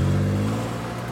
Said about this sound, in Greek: Το 1999, σε ηλικία 37 ετών, επιβιβάζεται όπως συνήθως στο αμάξι του, φεύγοντας όμως αυτή τη φορά προς μέχρι σήμερα άγνωστο προορισμό.